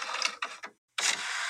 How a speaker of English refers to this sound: Oh, he's physically printing paper. Oh, I mean, that's what we've been doing.